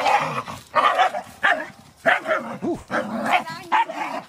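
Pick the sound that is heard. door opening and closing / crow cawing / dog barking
dog barking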